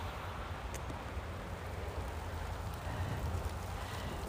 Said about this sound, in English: But yeah, that's rain just outside the cabin. And those are cars passing by.